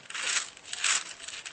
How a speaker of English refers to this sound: I like the onion pages turning.